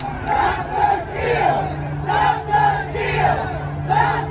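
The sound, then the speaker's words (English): A large crowd of rioters on the east side of the Capitol roars and shouts continuously, waves of loud overlapping voices swelling and falling every second or so, with a steady low hum beneath. “Here's what that crowd looks like on the east.”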